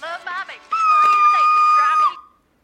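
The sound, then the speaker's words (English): A banshee's shrill, wailing scream, held steady and piercing for about a second and a half after a few short vocal whimpers, then cutting off abruptly as it breaks a flower. “Hey, her screaming broke the flower.”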